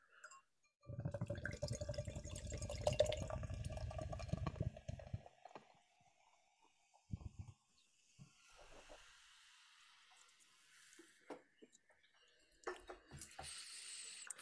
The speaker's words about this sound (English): And that's just from opening the can, let alone pouring it, which I think we now should do. Yes, can we, please?